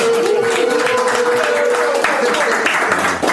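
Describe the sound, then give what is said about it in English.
A burst of clapping and cheering fills the whole moment, loud and steady, with raised voices and a held shout rising above the dense, crackling applause. “Let's make some noise for y'all keeping the gangster.”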